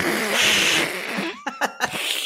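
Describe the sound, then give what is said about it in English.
A person imitates an angry cat: a long, breathy hiss followed by three short, sharp spitting bursts, fairly loud, with no talking. “I say these things and everyone like an angry cat.”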